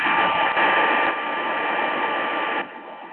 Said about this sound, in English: That sounds like somebody's trying to get a hair dryer on. Yeah, hair dryer or something. Yeah, I'm not sure what that was.